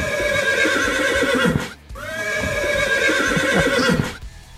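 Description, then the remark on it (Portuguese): A horse neighing sound effect, dubbed the Bronco and played in place of a horn, two loud, long shrill whinnies back to back with a brief pause between, the pitch quavering and falling away; no one speaks. “não tem buzina, tem o Bronco, o relinchando aqui.”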